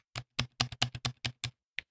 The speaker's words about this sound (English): Yeah. Not too loud. It should not sound much louder than like, I don't know, your typical like Dell desktop keyboard.